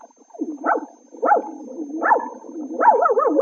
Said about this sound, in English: Oh, Jack, look at that cute little dog.